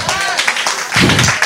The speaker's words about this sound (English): Let's stand on our feet and give the Lord a clap in the house. Oh, are we clapping?